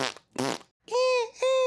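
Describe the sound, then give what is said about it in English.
Two short, sputtering fart noises blown with the mouth, then two longer, strained, squawking tones, all fairly loud with brief gaps between them. “Can we sans the fart noises?”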